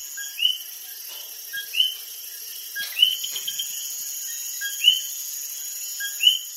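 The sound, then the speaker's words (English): Coqui frogs call at night in Las Marias, Puerto Rico, their short rising two-note chirps repeating every second or so from several directions over a steady, high insect drone. No one speaks. “Before we go, we leave you in Las Marias, Puerto Rico, in the company of Cokie frogs.”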